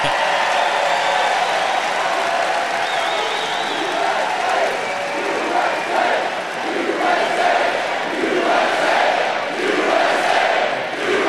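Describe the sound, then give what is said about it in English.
A large crowd at a Donald Trump rally roars and chants steadily, a dense wall of cheering voices with rhythmic swells that rise and fall throughout, loud and sustained without any break. “Pretty big crowd.”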